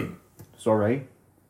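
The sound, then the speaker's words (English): A single short, voiced burp, rising abruptly and fading after about a third of a second, with quiet breathy sounds just before it. “I need a burp.”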